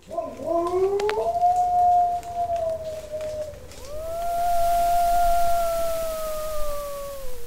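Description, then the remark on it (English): A long, mournful wolf howl holds a steady pitch, then a second sustained howl rises and glides slowly downward, with faint rustling background noise and no talking. “whether you can tell the difference between a North American wolf and a European wolf merely by listening to their howls”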